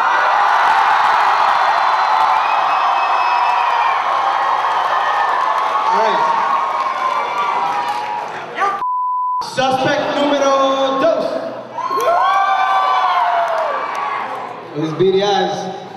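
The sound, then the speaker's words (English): A loud crowd screams and cheers continuously to vote, broken by a short electronic beep near the middle, then erupts again with high-pitched shrieks and whoops. “They're gonna scream. I'm gonna point. They're gonna scream. You guys are gonna decide.”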